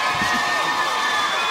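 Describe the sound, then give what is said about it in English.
An audience at the Eatons Hill Hotel applauds and cheers for a singer about to perform live, a dense, steady wash of clapping and crowd noise that holds at an even loudness for the whole brief moment. “big round of applause.”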